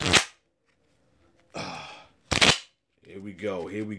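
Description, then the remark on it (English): A deck of cards is shuffled: sharp snapping taps frame a brief riffling burst, and then a person starts talking. “So let's get to shuffling the cards.”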